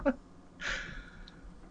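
A single heavy, breathy exhale rushes out after a brief vocal blip, then trails off into quiet background hiss.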